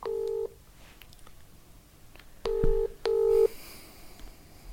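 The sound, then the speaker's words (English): A phone ringing out on a call: the tail of one ring, then a double-beep ringback pulse after a pause, clear and fairly loud over a quiet background with no talking. “I'm ringing him now.”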